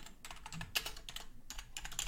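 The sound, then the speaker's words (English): Rapid keyboard typing, a dense run of crisp clicking keystrokes in irregular bursts, fairly quiet, with no voices. “Probably hear the typing, huh?”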